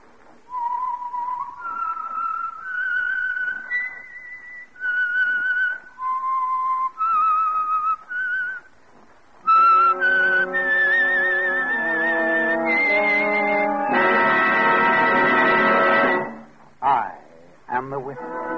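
A lone whistled melody of clear, sustained notes rises and falls for several seconds: the signature whistle that identifies the Signal Oil Program, The Whistler. Then a full orchestra swells in with a dramatic theme before cutting off abruptly.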